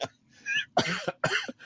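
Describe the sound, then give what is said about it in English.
A person coughs several times in quick succession, harsh, raspy bursts with a bit of throat clearing, and no talking in between. “Don't get me coughing.”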